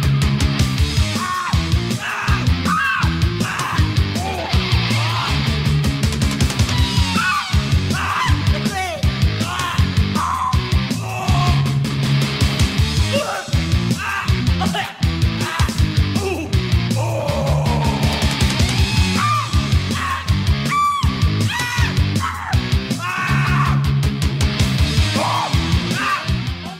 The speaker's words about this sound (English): This one's a bit of an odd duck, to say the least. It's this grungy, punky rock song. Again, another simple riff, simple percussion, all very standard stuff